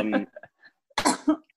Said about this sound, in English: we wanted to hear you cough over and over again. We just wanted to see what your cough sounded like.